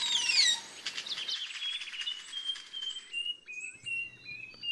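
Nightingale wren song: a quick burst of bright chirps, then a slow series of clear, pure whistled notes at shifting pitches, moderately loud, with no talking.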